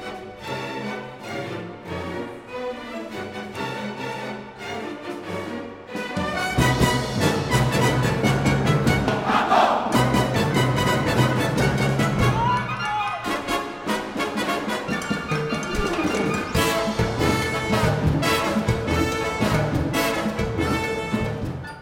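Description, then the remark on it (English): Loud, driving orchestral Latin dance music surges in after a quieter opening, and the instrumentalists, instructed to yell while playing, shout "Mambo!" together in brief, punchy group yells over the pounding rhythm. “They're playing, of course, but they're also instructed to yell the word Mambo.”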